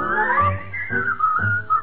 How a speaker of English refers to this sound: Whistle all the day. You will find the sun is shining while you whistle your blues away.